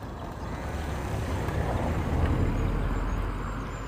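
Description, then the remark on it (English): A car passes along a quiet road beside a field of sheep and lambs, its low engine rumble and tire noise swelling to a peak midway and then easing off, with a steady breezy hiss throughout and no voices. “Car coming. You have to be quiet for a sec.”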